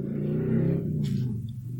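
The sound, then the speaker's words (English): A car passes by with a steady low rumble that swells slightly and then fades, with a brief hiss of tyres partway through. No one speaks. “That car agrees with you.”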